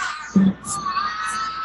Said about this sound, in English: It's hard to tell. All I hear is cheering.